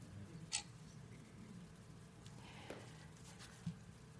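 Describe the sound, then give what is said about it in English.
A few faint, sharp ticks spaced irregularly over a low background hum, like a clock ticking quietly. “So, time is ticking.”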